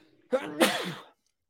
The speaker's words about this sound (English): I'm gonna sneeze again. Excuse me.